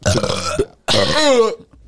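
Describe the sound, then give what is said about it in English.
Two loud burps in quick succession, the second longer and more drawn out with a rumbling, voiced tone, then silence. “You think we should be like a burping couple one?”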